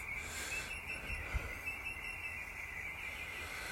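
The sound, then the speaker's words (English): Faint birdsong forms a continuous high chirping wash with no clear individual calls, over a quiet outdoor background with a soft low rumble. “God, listen to the bird song.”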